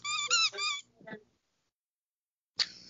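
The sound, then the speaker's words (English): A lamb chop squeak toy is squeezed, giving a few loud, high, honking squeaks in quick succession, then a fainter wheeze, followed by a pause and a short rustling burst. “I have a lamb chop squeak toy.”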